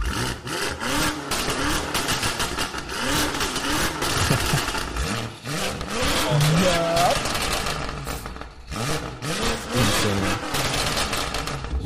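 An 850-horsepower car engine revs hard at high rpm outdoors, its pitch repeatedly climbing and falling in quick, aggressive bursts. The loud, continuous roar fills the whole stretch.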